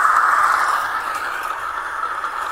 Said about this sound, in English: Okay, this started. Just started raining. All right, watch it. It just started raining. Oldsmar. Radar just popped. Boom. Watch, we're going to get a lightning. Always happens. Hear it?